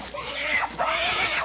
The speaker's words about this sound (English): she's giving the pig a bath. Yes, sir, she's got a tin wash tub, and she's down on her knees beside it.